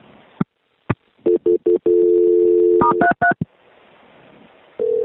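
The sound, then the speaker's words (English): Telephone line sounds as a call is transferred: a few sharp clicks, then a quick series of short dialing tones, a longer steady tone, and several more beeps before a faint hiss and a final tone. No one speaks. “Let me try it one more time before I transfer you.”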